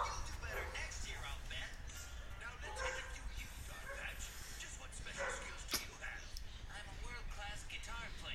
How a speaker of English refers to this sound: My dog's barking at the rubbish truck.